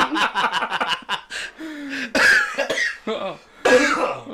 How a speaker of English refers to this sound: I can't walk around the house and hear her cough without getting aroused